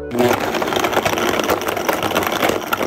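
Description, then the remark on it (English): A blender motor whirs loudly and steadily for about three seconds, its harsh, gritty grinding churning through frozen banana chunks with rattling crunches. No voices are heard. “The dulcet tones of frozen bananas getting ground up.”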